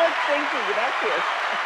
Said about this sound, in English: Yeah, we needed an applause on that.